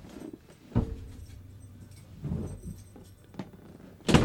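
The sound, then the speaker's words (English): A few soft knocks and shuffling noises, then a door in a house is shut with a sharp thud near the end, with no voices. “shut the door.”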